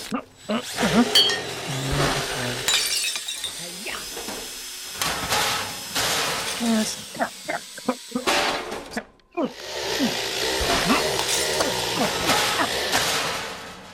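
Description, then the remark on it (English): Monkey fixes a robot: grinding, whirring and hissing bursts mixed with sharp metallic clanks and bangs, irregular and fairly loud, as robot parts are screwed and smashed, with occasional voice sounds. “Maybe if I take... And if I screw this... And then I smash it...”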